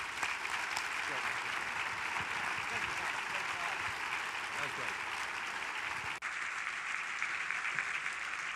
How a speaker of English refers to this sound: Ladies and gentlemen, let's give another hand of applause